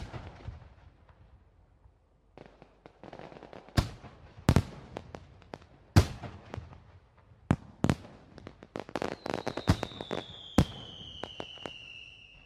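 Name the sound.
fireworks exploding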